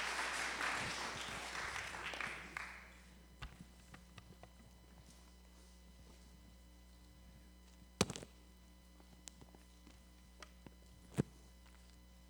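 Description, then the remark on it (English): A warm round of applause for a woman, a dense wash of clapping at the start that thins out and fades within about three seconds, followed by quiet with a few scattered knocks. “Give her a round of, warm round of applause.”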